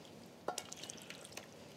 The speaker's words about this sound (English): Because it's baking in the oven, you want it to be a little bit liquidy when it goes in. Then it won't get thick and gloopy. Okay, now I'll just pour it into a casserole dish.